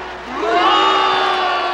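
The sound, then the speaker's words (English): A large crowd boos loudly as referee Bill Dudley is announced for the night's card, the jeering swelling into a sustained, droning chorus of many voices that holds steady for under two seconds. “When referee Bill Dudley is announced, he's already getting boos from the crowd.”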